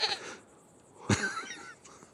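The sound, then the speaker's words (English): A goat bleats once, a short wavering cry with a sharp onset, preceded by a brief noisy burst and set against quiet background hiss. “You're taking the goat home in the back of your car?”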